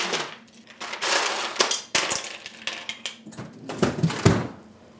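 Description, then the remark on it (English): Ice cubes are grabbed from a freezer for an ice bath while cooking shrimp, clattering in rapid, uneven bursts of hard clinks and rattles, fairly loud, over a faint steady hum. No one speaks. “Can I grab some ice from your freezer?”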